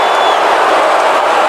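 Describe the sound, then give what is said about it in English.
A large crowd roars with sustained booing directed at Cruz as he ends his speech, a dense, loud wash of voices that holds steady without a break for the whole moment. “That was when they were booing him.”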